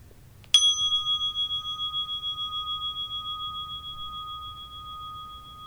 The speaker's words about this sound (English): We'll now begin the meditation. You will hear the sound of the bell to mark the beginning and conclusion of the meditation.